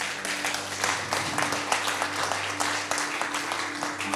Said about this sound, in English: Yeah, you can clap. Come on, church.